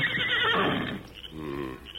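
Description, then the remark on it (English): A horse whinnies loudly, a shrill, quavering neigh that trails off into lower, rumbling snorts with no one speaking. “Then once more he whinnied.”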